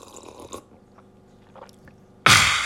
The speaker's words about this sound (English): Okay. I think I need a sip of coffee.